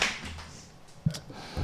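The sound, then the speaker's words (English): A few sharp, isolated hand claps ring out at irregular intervals, each a quick bright smack over a quiet, hissy background, with no voices. “Oh, he gets a clap.”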